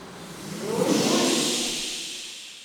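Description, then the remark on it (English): A group of performers in a live performance art piece imitate ocean waves with their voices, one long, breathy hissing whoosh that swells to a peak and then slowly recedes, a soft low rumble mixed beneath the airy rush. “When they flutter back to life a few moments later, they channel a fresh sensory experience, this time voicing the sound of the ocean.”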